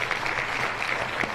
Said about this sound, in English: Listen, also, I know you're producing here, but I need you to give us the applause button, please.